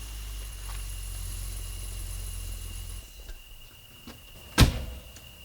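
A second car arrives; its engine idles with a low, steady rumble, then cuts off. After a short pause, a single sharp car door slams as two men get out.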